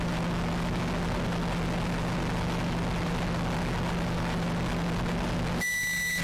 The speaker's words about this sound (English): Oh, it's so loud. Awful to hear. Microwave.